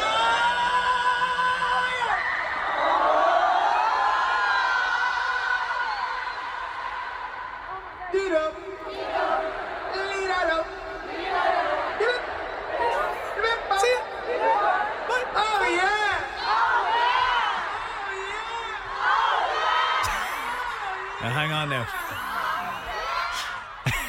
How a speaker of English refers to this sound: Just because the crowd, he can say words to the crowd and they can chant it back.